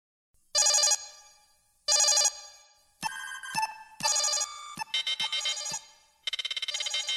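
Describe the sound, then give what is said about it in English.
Rios' sci-fi comm badge from Star Trek: Picard chirps with a series of bright electronic tones, about half a dozen bursts of varying pattern, some steady, some warbling, ringing out clearly with no voices. “They're taken away as Rios' comm badge chirps with Picard's voice.”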